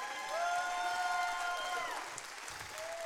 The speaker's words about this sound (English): Now give Jesus a hand clap because I ain't worthy of it.